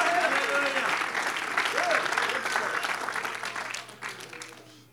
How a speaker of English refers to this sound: Oh, clap your hands and give him praise.